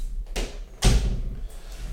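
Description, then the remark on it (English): A door swings shut, a light rattle followed by a solid, heavy thump and a brief low rumble fading away, with no talking. “You think, you know, doing the show like 50 years now, you think he'd close the door.”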